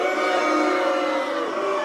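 A crowd boos in a steady, sustained roar of low, droning voices, holding at an even loudness for about two seconds with no clear speech.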